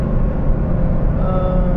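Steady, loud engine and road rumble from a car moving through traffic as it overtakes a slow bus, a constant low drone with a faint higher whine, no voices.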